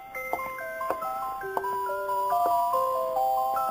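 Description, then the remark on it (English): A music box sitting on the counter next to the open door of a little store on 10th Avenue plays a delicate, bell-like melody of plucked metallic notes, several ringing and overlapping at a steady, gentle pace, with faint clicks of its mechanism and no voices. “And there it is, what you heard, the music box, sitting on the counter next to the open door, playing.”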